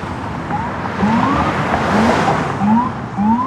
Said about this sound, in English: Oh, and here it comes. We've got black SUVs with the lights on, a van, armored NYPD trucks, an ambulance, tons of cop cars. There he goes.